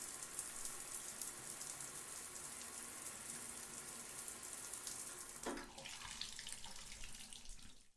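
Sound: cold shower water running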